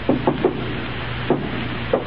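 Three quick knocks on a wooden door, then two more spaced-out single raps, moderately loud over a steady background hiss with no voices.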